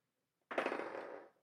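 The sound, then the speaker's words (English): Dice clatter and tumble across a table, rolled for a wisdom saving throw in a tabletop game, in a quick burst of rapid, bright clicks that start abruptly and rattle for under a second before settling. No one speaks. “I will roll for each of them really quickly.”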